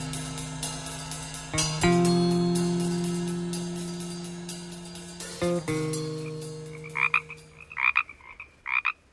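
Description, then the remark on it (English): Pacific chorus frogs croak at night in a dense, rhythmic chorus, with loud calls rising over a steady background of overlapping croaks, followed by a few sharp, repeated bursts near the end. “These are Pacific chorus frogs, once prolific and common around California, and providing an outdoor nighttime soundtrack for many Hollywood movies.”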